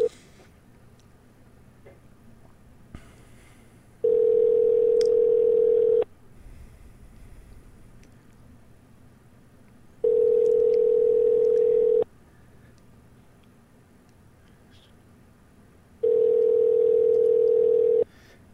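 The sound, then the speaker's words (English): A phone call to a Walmart store rings through the earpiece, three long steady tones separated by regular pauses, with nobody picking up. There is no talking, just quiet line hiss between rings. “Don't even answer their phones.”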